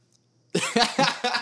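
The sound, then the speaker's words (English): After a brief quiet moment, a sudden loud sneeze breaks out in a rapid series of harsh, breathy bursts, about four pulses in quick succession, with no talking. “I'm going to sneeze. It's going to interrupt this whole thing.”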